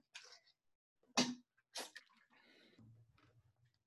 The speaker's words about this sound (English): Again, just let me take a sip of water.